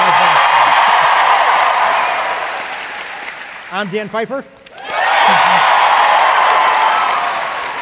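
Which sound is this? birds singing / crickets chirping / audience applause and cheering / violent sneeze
audience applause and cheering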